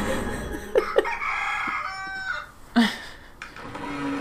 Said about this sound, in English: If I ever hear, like, a rooster, I'm gonna fucking have PTSD flashbacks to this episode.